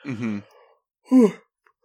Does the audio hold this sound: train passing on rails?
no